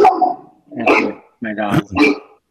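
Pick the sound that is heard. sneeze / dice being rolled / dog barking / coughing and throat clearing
dog barking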